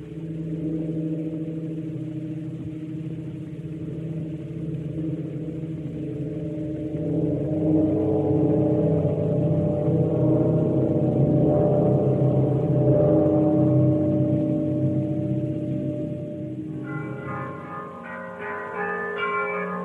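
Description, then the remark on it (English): Church bells ring in a steady, overlapping wash of deep humming tones that swells slightly midway, with brighter chiming overtones breaking through near the end. No voices are heard. “Some ringing church bells for you to get you in, get us all here in the mood for Vampire Year from 1932.”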